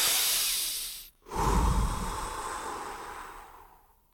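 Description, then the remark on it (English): A man breathes heavily and dramatically to demonstrate how dying people breathe: a long breathy exhale, a brief pause, then a deep, drawn-out inhale that slowly fades. No one speaks. “He exhaled and inhaled dramatically to demonstrate.”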